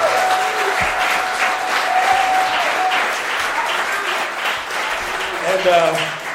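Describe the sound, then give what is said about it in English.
A steady round of applause from a crowd for the volunteers, dense continuous clapping at an even loudness, with some cheering or whooping rising in the mix near the end. “So, if you wouldn't mind, could you please give a round of applause to all of our volunteers who have put in so much time to make this place so amazing.”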